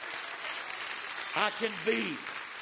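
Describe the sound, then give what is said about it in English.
An audience claps steadily throughout, a dense, continuous patter of many hands, with a few short voiced whoops and cheers rising above it midway. “Come on, clap your hands and rejoice to that right now.”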